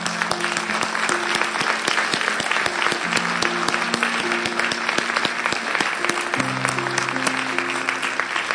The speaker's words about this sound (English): So could we just lift the mood in the room for a moment? Could we just end by a round of applause for that?